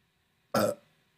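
A single loud, short burp erupts from near-silence, a broad guttural blast lasting about a quarter second before fading quickly.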